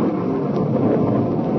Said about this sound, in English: And there's a storm, Jonathan! A storm's breaking! And it's raining!